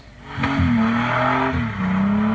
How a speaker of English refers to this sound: Selfish and stupid is how police have described dangerous hooning behaviour as part of a crackdown on the Sunshine Coast. This car spinning out of control and coming frighteningly close to the person filming the stunt.